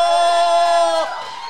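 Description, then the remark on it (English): An audience cheers, with one loud, sustained high whoop ringing over the crowd for about a second before it drops away into softer crowd noise. “It's okay to clap. This isn't the library. Yeah, let's go. Everyone clap.”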